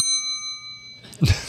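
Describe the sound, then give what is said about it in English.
A single bright bell rings out clearly, its clear metallic tone sustaining for about a second before a short, noisy rustle cuts in near the end. “That went Bell.”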